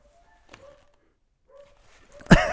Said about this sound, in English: Now both dogs are barking.